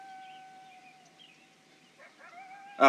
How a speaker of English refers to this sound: Wow, it's just a dog. Okay, sorry. Is it the Sawyer's dog across or the way? Sawyer's coyote? I don't know. Yeah, the Sawyers don't have a coyote.